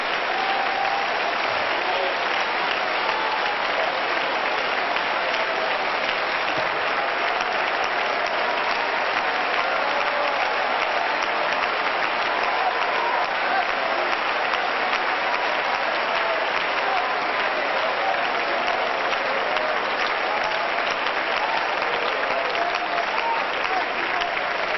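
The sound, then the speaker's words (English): A large audience claps in praise of God, steadily and densely for the whole stretch, a loud, continuous wash of many hands with no voices standing out above it. “But would you put a tail on that and clap one more time?”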